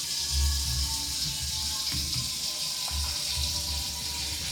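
Water runs steadily from a tap, a continuous hissing, splashing flow with low rumbling gurgles, filling the whole stretch without pause and with no one speaking.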